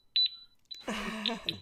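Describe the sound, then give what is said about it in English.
Sharp, high-pitched electronic metronome beeps from a CPR device, whose two metronomes start when its back is popped off: a quick pair, then more beeps spaced at a steady pace over a louder, buzzing electronic sound. “It sets off two metronomes.”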